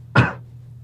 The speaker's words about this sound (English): Sorry, I need to cough.